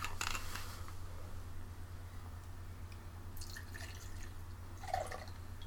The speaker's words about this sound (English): I better pour this one kind of light. That's not light. Oh, well.